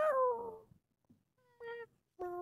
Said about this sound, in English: A long, long time ago, in a land far, far away named France, there were these nuns. And one day, one of the nuns decided to meow at another nun.